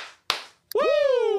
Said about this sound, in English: Two claps and a Ric Flair.